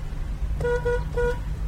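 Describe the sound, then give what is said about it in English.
A car horn in Cairo, Egypt sounds a coded honk pattern: three quick honks in a deliberate rhythm, two close together and then a third after a short gap, over a low steady engine and traffic rumble. “But I am proud to say that I am now officially a student of honk. Like this.”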